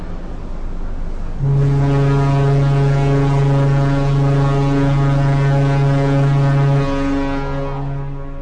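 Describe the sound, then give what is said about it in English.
The whistle of the cruise ship Europa sounds one long, loud, sustained blast of about five seconds as a traditional farewell while leaving port, a deep steady tone rich in harmonics, over a low background rumble. No one speaks. “We say our goodbyes with three traditional blasts on the ship's whistle as we leave this fascinating port.”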